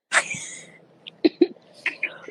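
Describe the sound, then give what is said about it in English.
A woman with a bad summer cough gives a sharp, loud cough at the start, then a run of shorter, rougher coughs in quick succession, with a raspy, breathy edge and no talking. “They like, why you got this girl on here? She coughing.”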